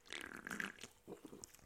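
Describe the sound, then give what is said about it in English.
A sip of Kirkland Signature grapefruit sparkling water: a drawn-out slurping pull lasting under a second, then a few short, soft gulps and faint fizzy crackles, with no talking. “Oh, let's start this episode off right with a nice little sip of a Kirkland Signature sparkling water grapefruit, of course.”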